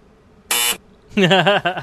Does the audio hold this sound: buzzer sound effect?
yes